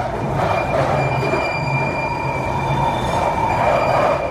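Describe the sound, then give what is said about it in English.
A London Underground train's wheels screech in a steady, high-pitched squeal that holds for several seconds over a loud, continuous rumble of rolling carriages. “to have a little hunt online to see if I can find an audio recording that someone's made of, like, the screeches of the tube.”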